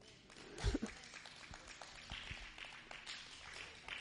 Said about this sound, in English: I need more claps than that.